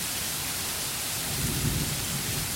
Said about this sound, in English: Soon the rain starts, small drops at first, then larger drops, and then sheets of rain plummeting us.